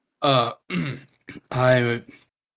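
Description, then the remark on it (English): A few short, voiced throat-clearing coughs to clear an itch at the back of the throat, coming in uneven bursts with a longer, rougher one near the end, and no other sounds around them. “It feels like a itch at the back of your throat, and you cough a few times to clear it.”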